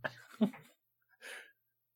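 Heavy, close breathing: a long, rough breath followed after a short pause by a second, shorter huff, fairly quiet with no talking.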